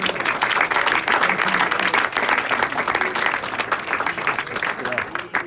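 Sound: audience hand clapping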